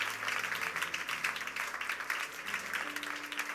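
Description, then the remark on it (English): A church audience applauds steadily as a clap of praise for Jesus, dense overlapping claps filling the space for a few seconds, with a low hum of organ or keyboard tones sustained underneath. “Give Jesus a big clap of praise.”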